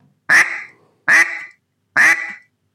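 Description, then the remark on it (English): Three loud, evenly spaced duck quacks blown on a duck call, each a harsh, buzzy honk with a slightly drawn-out fade, with silence between them. “You can have your quack slow.”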